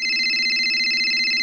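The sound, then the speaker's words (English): A phone rings with a steady electronic trill, a continuous high-pitched warble that holds at an even, fairly loud level for the whole moment, with no voices over it. “So my phone rang.”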